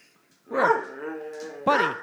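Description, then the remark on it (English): A person's voice imitates Buddy the dog, giving a drawn-out, strained bark-like yelp followed by a second sharp burst, loud. “Do Buddy the dog.”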